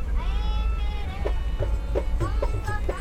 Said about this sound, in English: We're now listening to some sounds recorded by James Dunn. These were recorded on a recent trip to India. At the moment, we're on the Kerala Express train.